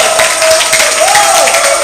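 A crowd claps loudly and steadily, the dense patter of many hands filling the whole clip, with a faint sustained tone gliding underneath.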